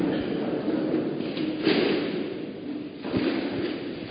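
Chairs being shuffled and set down in a busy room as they are arranged in groups of five and seven, with a steady rumble of scraping and two sharper knocks as they land on the floor.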